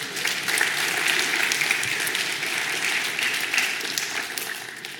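A crowd breaks into sustained applause, many hands clapping in a dense, steady wash of sound that holds at an even loudness for several seconds before tapering slightly at the end.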